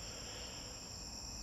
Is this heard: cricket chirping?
yes